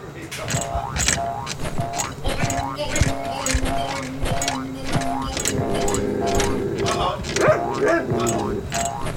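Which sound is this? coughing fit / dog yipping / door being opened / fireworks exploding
dog yipping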